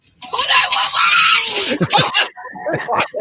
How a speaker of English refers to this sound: Call 911! He screams, call 911! Call 911!